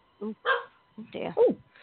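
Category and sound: animal, puppy barking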